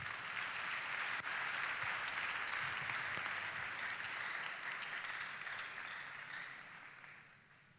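A crowd applauds steadily, a dense rush of many hands clapping at once that holds for several seconds and then gradually thins and fades out. No voices are heard over it.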